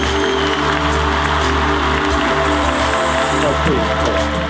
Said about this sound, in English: My goodness, it's like a choir singing you in with the applause, Gare. Please, don't stand up, please. I'm telling you, people love you out there, man. They just go crazy.